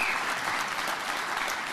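A crowd applauds a singer for his long-standing career, a steady, dense, even wash of many hands clapping at a constant moderate level throughout, with no voices rising above it.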